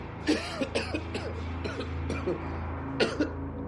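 man coughing

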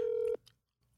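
phone call being dialed

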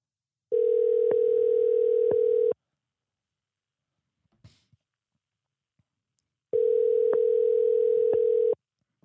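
phone call ringing

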